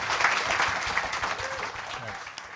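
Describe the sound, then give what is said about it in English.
An audience applauds the panellists at the end of an evening panel discussion, a dense wash of many hands clapping at fairly even loudness that fades slightly toward the end, with faint voices mixed in underneath. “A round of applause for our panellists this evening.”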